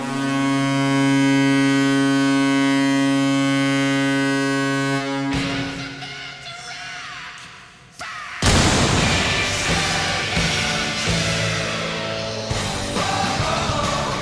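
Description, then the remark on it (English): A loud, sustained low goal horn blares for about five seconds in a hockey arena in Columbus, then gives way to roaring crowd noise, punctuated by a sharp booming blast from an actual cannon before the cheering continues. “So the thing there is that they have an actual cannon.”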